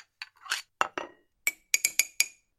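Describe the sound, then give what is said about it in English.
A teacup clinks repeatedly as tea is made: a run of bright, ringing ceramic taps, some scraping and stirring at first, then sharper rapid clinks with a high ringing tone. No one speaks. “And so the old man makes the Rebbe a cup of tea.”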